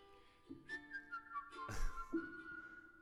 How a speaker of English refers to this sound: Is this you whistling?